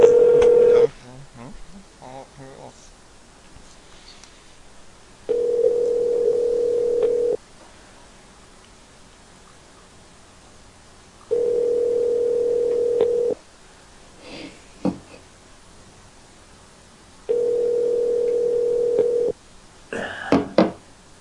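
Telephone tones as a call is placed about a portable toilet listed in a Craigslist ad: a steady tone and brief dialing beeps at the start, then a loud, even tone that repeats three times, about two seconds on and four seconds off, with quiet gaps between.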